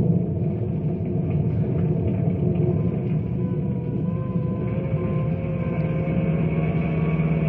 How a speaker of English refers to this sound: Phone calls come in by the dozens, and emergency vehicles are on their way to the stricken area. Bill and his rangers race across town.